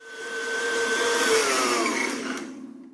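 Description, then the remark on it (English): A kitchen blender whirs loudly for a few seconds, blending vanilla ice cream, fresh blueberries and milk into a milkshake, its motor pitch sliding slightly as it churns, then cuts off abruptly. No one speaks. “My mom took out her blender.”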